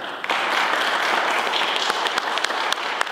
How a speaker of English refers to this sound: So a loud round of applause for the Disability Channel, please.